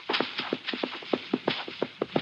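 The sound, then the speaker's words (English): A horse approaching from somewhere ahead, its hooves clopping in a quick, steady rhythm, each beat a short sharp knock, staying at a fairly even loudness with no voices. “Hey, a horse. Ahead of me somewhere.”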